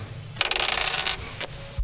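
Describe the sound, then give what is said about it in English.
Three small dice are rolled during a tabletop game, clattering and rattling across a hard tabletop in a quick burst of clicks, then a final tap as they settle on 2, 6 and 1, fairly crisp with no talking. “Somebody give me some dice.”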